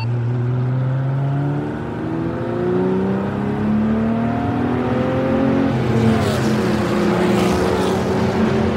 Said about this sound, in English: I was doing a conga line. 6 cars drove in a line about 3 inches apart from one another's bumpers.